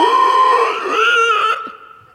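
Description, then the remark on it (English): A person imitates a pig's squeal with one loud, high, strained cry that holds steady for over a second, then breaks off and trails away, with no talking alongside it. “And the pigs are...”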